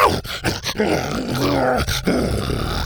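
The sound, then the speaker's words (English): A dog named Buck growls loudly in a sustained, rumbling snarl with a few brief breaks, continuing for nearly three seconds, as it chomps onto a blanket in a shed and thrashes it. No one speaks. “Buck was growling now. He chomped onto the blanket and started thrashing it.”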